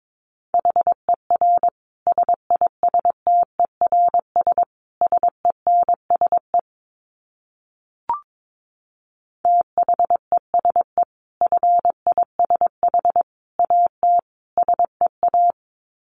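Morse code beeps at a brisk 22 words per minute: a single mid-pitched tone keyed in quick dots and dashes, two runs of characters separated by a pause broken by one sharp click.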